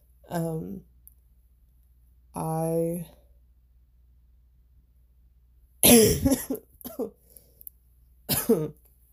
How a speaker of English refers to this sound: Sorry. Still dealing with the coughing.